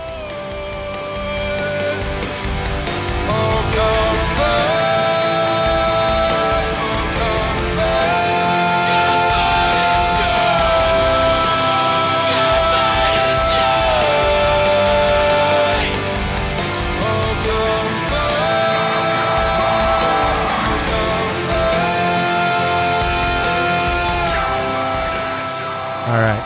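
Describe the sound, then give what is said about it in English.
A loud heavy rock rendition of a Christmas carol plays continuously, with dense distorted guitars, pounding drums and sung vocals that break into occasional screaming, steady and full throughout. “It's got a little bit of screaming in it, and it's okay.”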